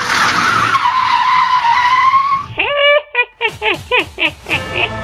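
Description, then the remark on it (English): A car screeches away with a long, loud tire squeal, followed by a quick series of sharp, honking bursts as the vehicle speeds off. “Follow that car, fast!”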